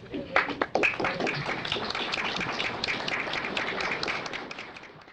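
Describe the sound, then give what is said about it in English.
The press corps stands and applauds steadily as NASA announces the Mercury astronauts, a dense patter of many hands clapping at once, with a few sharper claps at the start and a faint murmur of voices underneath. “The press corps stood up and applauded when the Mercury astronauts were announced by NASA.”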